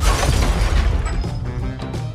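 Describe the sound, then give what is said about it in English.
The Messenger space probe slams into the surface of Mercury at the end of its mission with a loud, deep booming crash, heavy rumbling impact noise that rolls on and slowly tapers off, with no voices. “Every crater except the one Messenger made when it crashed into my surface at the end of its mission.”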